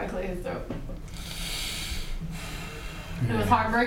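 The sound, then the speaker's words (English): A man clears his throat, rough and raspy and fairly loud, stretching for a second or so between brief voiced sounds, with breathy noise around it. “Clear his throat.”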